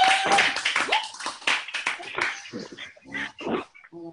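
A group claps together in a dense, irregular burst of applause, loud, thinning out toward the end with a few brief vocal sounds mixed in.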